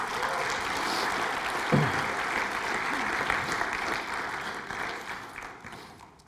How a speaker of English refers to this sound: Let's give a clap to them.